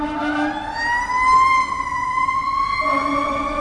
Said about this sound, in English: Can you hear the sirens?